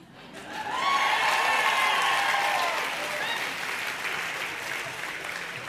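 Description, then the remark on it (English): Sustained applause from an audience, a dense wash of many hands clapping that swells quickly, holds steady, then eases slightly while continuing, with some crowd noise mixed in. “Well, a lot of you clapped, but who smiled?”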